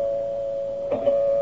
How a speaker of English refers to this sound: Finally, the doorbell rang.